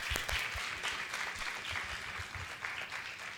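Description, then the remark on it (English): An audience claps in a steady, dense round of applause welcoming panelist Professor Gangadhar Shastri, many hands blending into a continuous crackling wash that stays fairly even throughout, with no voices standing out. “Let us all welcome again Gangadhar Shastri, Professor Gangadhar Shastri, with a great round of applause.”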